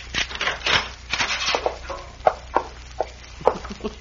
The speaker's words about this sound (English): Yes, but his key's in the keyhole on the other side of the door. Well, these keys are made so you can push them right out.